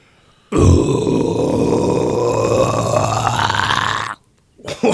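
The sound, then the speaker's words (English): A single loud, raspy guttural scream in death metal style, held for about three and a half seconds with a harsh, gritty tone, then cutting off abruptly, followed by a brief noisy rustle. “That's like Grammy-worthy of death metal right there.”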